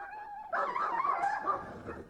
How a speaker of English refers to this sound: Phoenix heard the dogs fighting and heard the man running and throwing sticks.